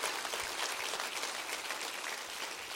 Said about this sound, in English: Come on, clap your hands and rejoice right now.